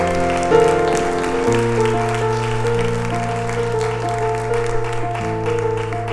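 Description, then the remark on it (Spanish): Steady audience applause fills the space for several seconds, a dense patter of many hands clapping over sustained, held musical chords playing underneath. “Era un aplauso si usted tiene un buen esposo o una buena esposa.”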